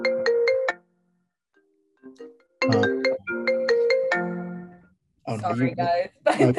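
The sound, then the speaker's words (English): A computer ringtone rings loudly, a quick run of bright electronic tones, then a longer melodic burst after a short pause, followed by someone starting to talk. “It was my computer. My phone isn't has the ringer off, and my computer screaming at me.”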